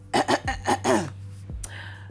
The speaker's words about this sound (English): Let me clear my throat.